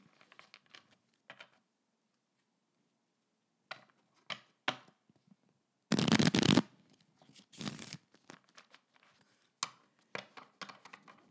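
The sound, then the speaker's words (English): Playing cards being shuffled: scattered soft taps and flicks, then a dense, rapid riffle burst, followed by more crisp card snaps and shuffles, with no voices. “Macy has said she's very proud of her shuffling.”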